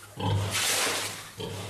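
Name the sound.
pig grunting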